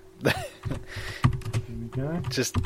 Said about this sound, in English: Can you hear me typing?